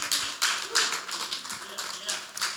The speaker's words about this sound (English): Man, anyone excited to be here this morning? Come on, let's give a round of applause to the worship team again.